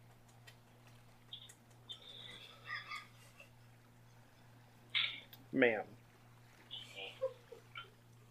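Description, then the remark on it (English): A dog scratches its ear in a quick burst of rapid, rhythmic scuffing and thumping that lasts about a second, with faint voices murmuring around it. “Just in case that makes that on the podcast, that's a dog scratching its ear.”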